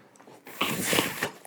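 A short, breathy rush of air as a person blows right into a dog's nose, followed by the dog's snuffling snort, lasting under a second before it fades to quiet.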